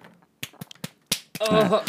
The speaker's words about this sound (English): I don't beat my kitty's ribs gently. I don't. Yes, you do. You barely even tap them.